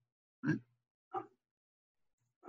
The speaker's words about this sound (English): Boy, that dog doesn't usually bark that much. Hope you guys can't hear it too much.